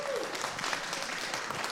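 A short burst of audience applause, steady dense clapping from a group of people with no break, fairly loud throughout, with a brief faint vocal tone at the start.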